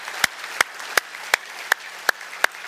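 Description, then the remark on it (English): Seven sharp claps land in a steady, even rhythm, about three per second, as a church audience applauds the mothers together in unison during a morning service. No talking is heard over the clapping. “We applaud you all.”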